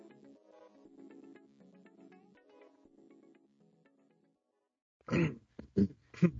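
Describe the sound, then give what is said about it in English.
Three loud coughs in quick succession near the end, following several seconds of soft, low tonal sound that fades into a brief near-silence. “cough.”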